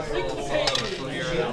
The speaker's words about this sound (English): Go ahead and roll for damage. Roll a d4. Oh. Pyramid die.